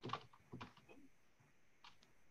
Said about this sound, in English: No, I'm typing it into the... I thought you were Googling it.